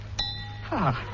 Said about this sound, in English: Just to demonstrate how I produce this lovely sound, I fill up this glass so, and strike it with this small hammer so. A little melody using 7 ordinary glasses of water. I fill up the glass so, and strike it so.